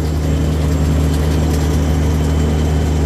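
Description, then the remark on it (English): A big truck's heavy engine drones steadily and loudly at low pitch, with a constant rumbling hum and faint whine on top, as the truck is driven along, kept between the zipper line and the solid line of its lane. No one speaks. “Try my best to do my job keeping this truck between the zipper line and the solid line.”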